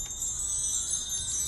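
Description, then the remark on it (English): Wind chimes ring in a steady, shimmering wash of high metallic tones that overlap and sustain throughout, with no voices. “Sorry, it's my chimes.”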